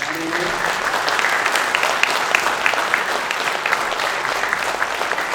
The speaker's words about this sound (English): we're going to clap until you get up here, so you might as well.